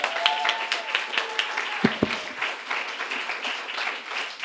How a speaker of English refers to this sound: Let's please give them a warm round of applause.